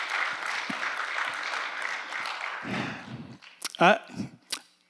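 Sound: audience applause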